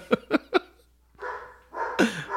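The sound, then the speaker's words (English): A dog named Henry barks three times in quick succession, sharp, followed by a pause and then a longer, rougher volley of barking that trails off. “Do you think people hear Henry barking?”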